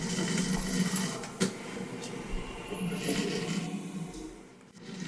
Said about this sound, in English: That cavernous sound, easily confused with an iron lung, is coffee being brewed by a percolator.